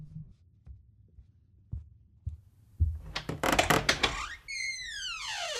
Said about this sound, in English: Hey guys, did you hear that? Yeah, I think there's someone knocking at the door.